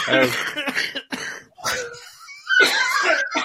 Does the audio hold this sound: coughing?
yes